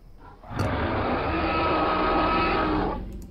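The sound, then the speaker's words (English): A single long, rumbling dinosaur roar in a jungle, not too distant, loud and steady for about two and a half seconds before fading out, with a growling, raspy texture and no talking. “Dinosaurs. Not too distant, jungle.”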